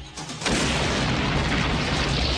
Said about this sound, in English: That was a bomb?